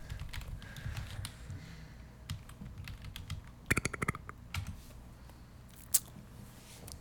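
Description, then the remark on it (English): Keys clatter on a computer keyboard in quick, irregular bursts, with a denser flurry of clicks midway and a sharp single tap near the end, over a low background hum. “This fucking dude over here clickety-clicking.”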